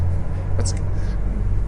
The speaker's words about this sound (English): I think we're about to be run over by a truck, but we're all right for now, I think.